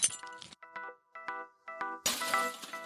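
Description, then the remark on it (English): A glass figurine shatters in a sharp crash, then bright tinkling pieces ring out in short bursts before a second loud breaking crash sprays more shards. “Glass figurines are such a treat. They dissolve instantly in Grace's hand.”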